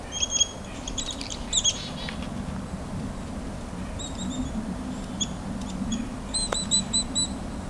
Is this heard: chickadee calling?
yes